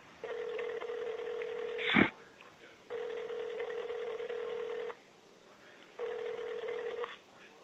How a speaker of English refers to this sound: I'm trying to call that number back.